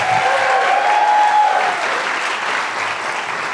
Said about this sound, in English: Should we give another cheer for Matt Berry, please?